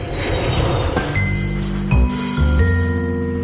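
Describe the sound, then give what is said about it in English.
A large bus engine rumbles with a low, steady drone, broken by short hissing bursts of air brakes and a few shifts in engine pitch. “A bus to a plane to a bus to a track.”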